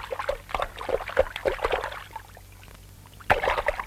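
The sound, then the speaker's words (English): Water splashes and sloshes in quick irregular bursts as a hedgehog in an animated film runs through fog into a river. It goes quieter for a moment, then a sharp splash starts a fresh flurry. “He runs into the fog. He's in the river.”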